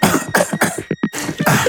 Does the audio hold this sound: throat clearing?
yes